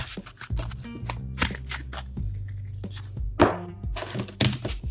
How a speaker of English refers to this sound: And let me, while I shuffle my cards, let me excuse me.